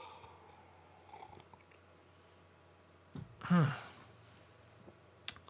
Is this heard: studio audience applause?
no